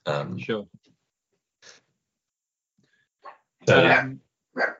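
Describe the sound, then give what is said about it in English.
Sharp, loud barks from dogs come in irregular bursts, a quick double at the start, then scattered single yaps and one longer, fuller bark near the end, with silent gaps between. “Oh, dogs are going slightly crazy.”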